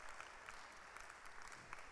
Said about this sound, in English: Clap your hands for her.